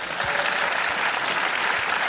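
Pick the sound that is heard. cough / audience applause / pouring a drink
audience applause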